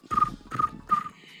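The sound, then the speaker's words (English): Crickets chirping in three evenly spaced bursts, each a buzzy, trilling chirp with a clear mid-high tone over a rougher low rasp, heard alone with no talking. “Crickets.”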